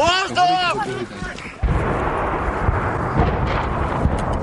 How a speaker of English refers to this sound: In the Kyiv suburb of Irpin, people dash for their lives as Russian shells rain down.